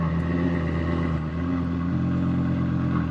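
An LFA sports car's V10 engine with a tri-exhaust rumbles loudly, a deep, steady drone whose pitch shifts slightly midway as it revs, with no voices present.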